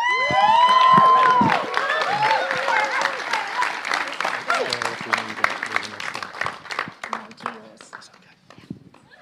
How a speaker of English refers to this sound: So as they come forward, would you give them a huge cheer?